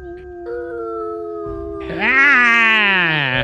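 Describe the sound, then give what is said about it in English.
Several wolves howl together in the distance in long, overlapping wavering tones, the chorus swelling louder and higher partway through before sliding back down. “You hear howls off in the distance, everyone into the forest. These wolves howl.”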